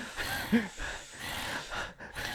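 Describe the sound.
Heavy, noisy breathing, a few rough inhales and exhales in an uneven rhythm with a brief snorting catch, no talking; someone breathing really heavily just over the shoulder of a man who is counting money.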